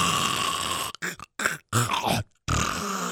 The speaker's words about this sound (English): I didn't know dogs snored. Dude, they snore, bro. They snore. Wow. This dog snores like a truck convoy.